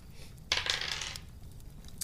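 A small candy corn die, rolled for damage in a tabletop game, clatters and tumbles across a hard tabletop in a quick burst of rattling clicks, settling after about half a second, with one faint tap afterward.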